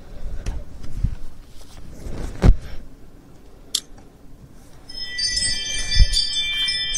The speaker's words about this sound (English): Oh, shut up. Every time a car drives by, my ring goes off.